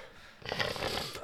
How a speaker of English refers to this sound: You heard the big bit of phlegm. I'll spit it out there. It's still sitting there.